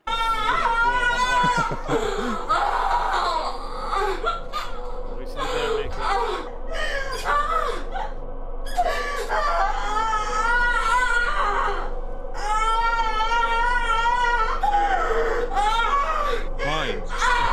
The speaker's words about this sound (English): Oh my god, it doesn't end. It's just constant screaming.